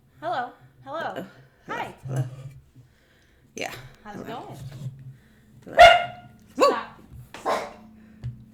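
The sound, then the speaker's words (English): A dog barks in a rapid series of shrill, high-pitched yaps, with brief pauses between bursts and a few louder, sharper barks toward the end. “They've been barking.”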